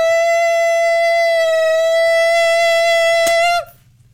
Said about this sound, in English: Basically, you just have to keep the right frequency at a loud volume long enough for the glass to break. We actually have some video of the guy who was trying it.